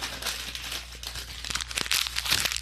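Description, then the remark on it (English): A piece of paper being crumpled up, a continuous burst of crisp crinkling and crackling that grows a little louder and sharper toward the end, with no voices. “That was me crumpling up my piece of paper.”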